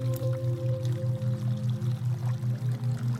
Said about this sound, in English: We feel drawn to the water and walk towards the sounds of the babbling brook. As we get closer, the sounds of water moving and flowing get louder